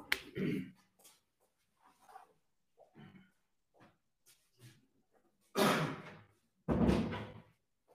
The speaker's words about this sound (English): So, wait, let me close the door. Wait one second.